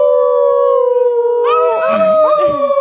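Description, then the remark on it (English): A loud, sustained wolf-like howl holds a long steady tone as Windar howls loudly to the music, then humans join in with wavering, overlapping howls toward the end, continuous. “And all the humans, they just kind of start howling along, you know?”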